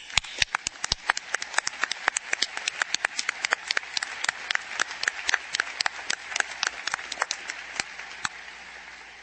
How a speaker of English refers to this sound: Please join me in applause to express our appreciation.